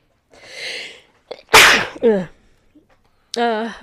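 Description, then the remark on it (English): A single loud sneeze bursts out after a short breathy intake, followed by a brief vocal sound and a pause, then a man starts speaking again. “I got to sneeze. Hold on a minute.”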